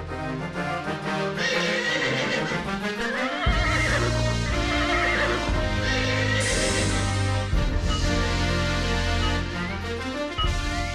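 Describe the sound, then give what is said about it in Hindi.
A horse neighs and whinnies with wavering, high-pitched cries, partly buried under loud, continuous dramatic music with deep bass notes. No one speaks. “लेकिन आप इसकी सवारी मत कीजिएगा क्योंकि ये किसी को अपनी पीठ पर नहीं बैठने देगा।”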